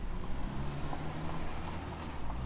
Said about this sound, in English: Outside the Arizona History Museum, the street is often bustling with cars, students walking with friends to and from class, and the public shuttle service, the SunTran.